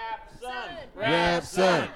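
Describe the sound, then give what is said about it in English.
A crowd chants a performer's name and cheers in rhythmic voiced shouts that swell louder and fuller toward the end, the roar building over two seconds. “The sound of the crowd grows.”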